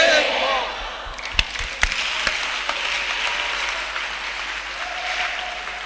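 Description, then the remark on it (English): An audience claps together in a steady wash of applause, with a few sharper, louder claps standing out and a faint murmur of voices underneath. “Your clapping is the receiving.”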